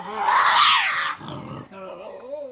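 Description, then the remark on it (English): A Tasmanian devil screams: a loud, harsh, rasping shriek lasting about a second, dropping into a lower guttural growl, then a softer wavering, whining cry. “That means more time for sleeping in your den, lumbering around the forest for hours at night, and screaming as loud as you can to your friends.”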